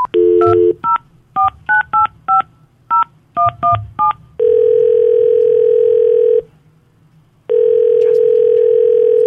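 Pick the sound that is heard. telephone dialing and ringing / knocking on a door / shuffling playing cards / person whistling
telephone dialing and ringing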